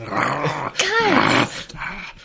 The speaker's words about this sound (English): As soon as you speak loud, the creature suddenly growls a bit louder.